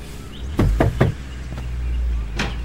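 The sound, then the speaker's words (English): Three quick, firm knocks on a door, followed by a softer thump and a later sharp click as the door seems to open, over a steady low background rumble with no talking. “Bam. Door's open.”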